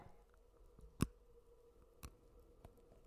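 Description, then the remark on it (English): Teeth bite into chocolate close to the microphone with one sharp, crisp snap, then two fainter clicks follow in otherwise quiet surroundings. “I'm going to see if I can do a bite.”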